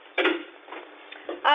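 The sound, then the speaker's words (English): In an old radio detective drama, a door swings shut with a solid thud and a rattle of the latch, followed by a softer clunk and another knock near the end, in a narrow, old-radio tone. “I'll close the door, Mrs.”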